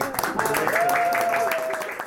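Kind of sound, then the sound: crowd, round of applause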